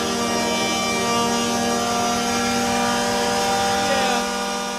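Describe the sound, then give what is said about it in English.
The old Eagles stadium touchdown horn from the early 2000s blares in one long, loud, steady note, rich in buzzing harmonics, holding for nearly five seconds over a rough background wash. “Number four, it's the old Eagles touchdown horn.”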